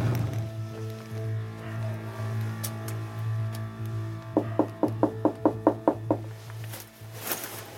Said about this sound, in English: We're gonna go to his front door, give it a knock, and see if he'll answer a couple of questions.